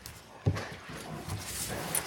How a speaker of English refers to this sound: A word of welcome to all God's creatures, including a dog, a church dog in training. So if you are hearing some whimpering, it takes time to learn how to be present in this place.